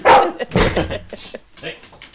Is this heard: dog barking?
yes